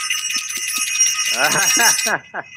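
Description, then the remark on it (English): A bright, high-pitched bell, rung for a caller on the Planet Remix radio call-in show, rings continuously with a rapid, trilling rhythm, then cuts off after about two seconds; a voice starts talking over the last part of the ringing. “Don't we have to ring that bell for you?”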